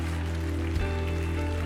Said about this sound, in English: If you receive that, give the Lord a clap offering.